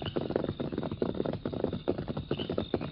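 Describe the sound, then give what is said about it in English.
The horses of the Lone Ranger and Tonto riding through the night, hooves pounding in a quick, steady galloping rhythm, moderately loud, with no voices, carrying on for a few seconds in a muffled, narrow-sounding recording. “A few minutes later, the Lone Ranger and Tonto were riding through the night.”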